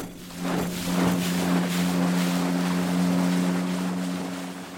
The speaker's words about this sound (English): Then he pulled the motor on and steered us under the steel bridge into the widest part of the lake.